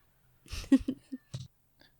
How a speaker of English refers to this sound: Sometimes our oldest daughter's cat gets left outside the boat and then she meows.